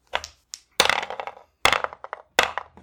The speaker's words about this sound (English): Let's grab our dice and roll again.